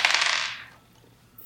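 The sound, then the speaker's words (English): Dice rolled for a game clatter briskly across a hard tabletop and land on snake eyes, a bright rattling burst that fades within a moment, followed by a short quiet and a brief final clack at the end. No voices. “Dice don't fail me now.”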